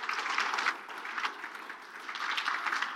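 Steady applause from an audience fills the space, a dense wash of many hands clapping at once, sustained without pause and moderately loud throughout.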